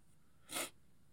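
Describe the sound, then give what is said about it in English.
A single sharp sneeze from a person with the sniffles bursts out, brief and hissy with a bright, breathy edge, standing alone against faint background noise with no talking. “Excuse me, in the sniffles.”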